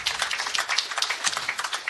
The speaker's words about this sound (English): And before we get started, he's going to hate that we do this, but can we do one more round of applause for Coach Spack in 100 minutes?